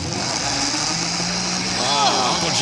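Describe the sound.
A blender mixes maraschino cherries, ketchup, tuna fish and mustard, its loud motor drone holding a constant pitch throughout, with a brief voice rising over it near the end.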